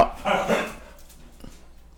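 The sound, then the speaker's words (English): Two quick, sharp dog barks close together, moderately loud, followed by a short quiet stretch with a faint soft sound. “The dogs are adamant that you stop.”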